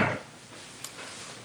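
A person closes their door with a soft, muffled thud at the start, followed a moment later by a faint click of the latch, then quiet room noise.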